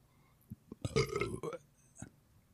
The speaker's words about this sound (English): All right, let me get a burp out.